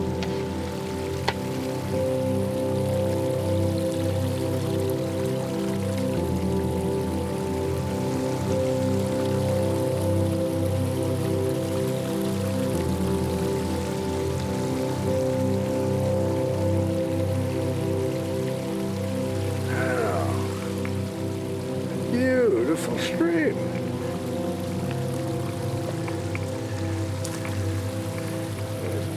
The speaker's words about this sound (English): Oh, look. Yeah, a stream. Let's stop and admire it for a bit.